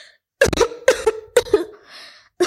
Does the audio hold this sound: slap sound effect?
no